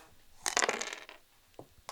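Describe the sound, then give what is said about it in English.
A handful of dice clatter onto a hard floor in a quick burst of sharp clicks and rattles, followed by a couple of isolated taps as stray ones settle. “I hope it was good because they're all over the floor now.”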